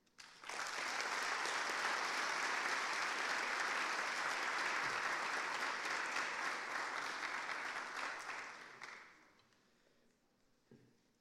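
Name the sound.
audience clapping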